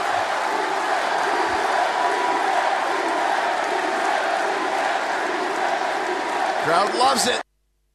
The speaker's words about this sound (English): I had to play that. I know it's a little self-indulgent, but to think that you'd have a crowd of wrestling fans in North America chanting, he's gay," in a very positive way, I can't tell you how much that moved me.